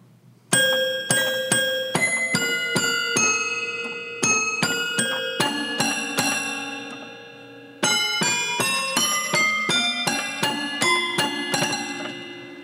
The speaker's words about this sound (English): I chose this 4-octave toy piano to play some of the themes